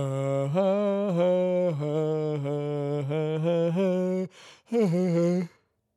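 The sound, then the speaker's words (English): A long, loud vocal yawn: a steady, low groaning tone held for about four seconds, then a brief breathy intake and a shorter moaning tail before silence. “So I reckon I've yawned once a minute. Here's another one.”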